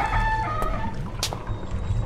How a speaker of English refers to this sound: I turned the door handle and pushed it. With a massive squeak, it swung.